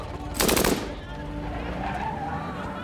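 A loud, rapid burst of MAC-10 submachine gun fire as a gunman empties its 30-round clip, a tight rattle of shots lasting about half a second, then fading into a steady, murmuring background with some tonal hum.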